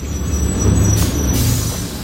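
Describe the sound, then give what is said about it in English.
A city bus rumbles low as it comes to a stop and a rider gets off, with a sharp hiss of air brakes bursting out midway. No one speaks. “getting off the bus now.”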